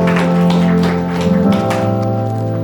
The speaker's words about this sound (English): Didn't this worship band something else? Aren't they something else? Give them a round of applause for taking us to the presence of God.